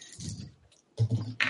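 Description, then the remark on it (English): Physical dice clatter and rattle in two short bursts, a brief pause between them; the second roll sounds a bit louder and sharper, with small hard clicks on a tabletop. “Oh, God, I have physical dice.”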